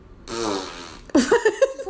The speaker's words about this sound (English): That's probably accurate, the fart noise. Does that mean you're picking Western Carolina?